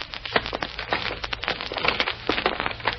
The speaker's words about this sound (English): On the platform is a large packing case, a very large packing case. And as it rolls into the hall...